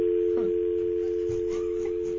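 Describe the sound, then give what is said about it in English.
A steady telephone dial tone hums continuously throughout, with a couple of brief blips that could be dialing key presses. It sounds moderately loud, with no voices. “Dude, the phones are blowing up over this.”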